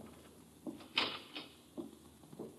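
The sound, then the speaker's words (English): A door closes with a sharp latch click as someone leaves the room, surrounded by a few softer knocks and thuds spread over a couple of seconds, quiet, with no one talking. “You may leave the room, but stay by the door.”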